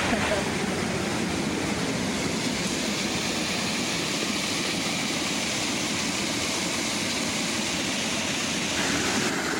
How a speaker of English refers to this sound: Look at that waterfall. Yeah, look at it gushing out.